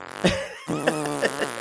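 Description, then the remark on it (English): A buzzy fart sound effect: a short raspy blurt, a brief gap, then a longer wavering, sputtering blast, fairly loud, with no talking. “Farting.”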